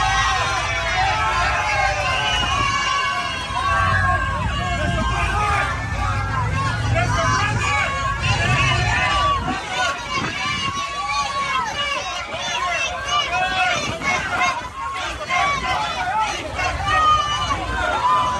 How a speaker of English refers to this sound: Look at him walking into Versailles, a very prominent Cuban restaurant down in Miami. Jorge Masvidal, UFC fighter, was there. The crowd went absolutely wild in a largely Hispanic portion of South Florida.